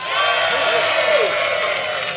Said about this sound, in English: But if you think that Fanshawe and Ashlyn made the best case, I'd like you to applaud now.